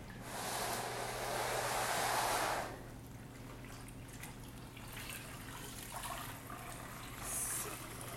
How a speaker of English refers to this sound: Some pretty atrocious mop water I got here. Yay, fun times.